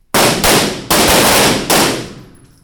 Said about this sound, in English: I dropped in at the Oakland Police Academy in Auburn Hills, where recruits were in the middle of shooting drills. On this particular course of fire, they have to hit the silhouette who has a gun in his hand